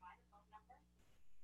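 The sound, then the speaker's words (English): A quick run of four soft electronic beeps as a smartphone voice assistant wakes up by mistake, fading into a faint hiss. “Sorry, my phone thinks that I'm talking to it and I'm not.”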